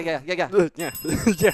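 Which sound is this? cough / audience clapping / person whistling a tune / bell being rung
bell being rung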